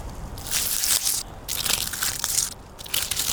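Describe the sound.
Rough, rasping scratches on the bark of a large spruce in a forest at dusk, in three or four sustained bursts separated by short pauses, harsh and hissy with a crackling texture, fairly loud, with no voices. The scratching imitates a predator climbing to a tree hollow high up, to check whether owls live there.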